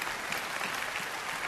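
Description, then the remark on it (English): An audience claps together in a steady, dense burst of applause, the many hand claps blending into a continuous crackling wash that holds at an even level throughout. “Come on, let's clap for the guy.”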